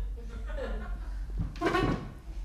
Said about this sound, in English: I shut the door now.